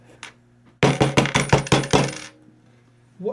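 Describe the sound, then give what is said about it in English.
A quick run of about seven sharp, loud knocks on a door, rattling and slightly metallic, over a low steady hum, with no one speaking. “What is that? Somebody at the door.”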